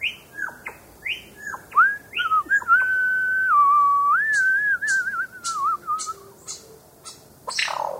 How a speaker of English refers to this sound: I can hear some of the other lyrebirds near here. And I think this song is coming from a female. Female lyrebirds are excellent singers too. Can you hear her whistling song?